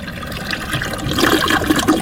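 A toilet flushes, a steady rushing gush of water that swells louder partway through and keeps churning to the end, with no voices over it.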